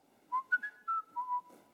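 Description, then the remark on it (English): Someone whistles a short, wavering melody of several sustained notes stepping down in pitch, clear, with no talking. “It's like he's whistling while he's putting the ball on the tee.”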